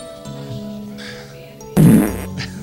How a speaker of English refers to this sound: The farts aren't part of it. Yeah. Well, they are now. Yeah. They are now.